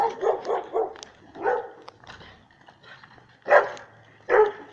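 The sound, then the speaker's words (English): A dog in a neighborhood barks repeatedly in short bursts, a quick cluster at first and then a few more spaced-out barks, moderately loud, with faint background noise and no talking. “You get a treat to my neighborhood. It's all dogs and birds and cars.”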